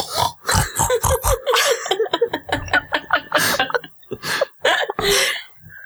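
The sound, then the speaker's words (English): A person imitates a pig's snorting with a run of rough, nasal grunts and snorts in quick succession, fairly loud, with bits of laughter mixed in. “she sounds like a pig. She snores.”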